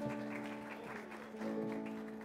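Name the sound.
audience applauding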